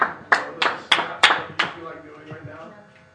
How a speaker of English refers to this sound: Can we just give him a hand clap for that?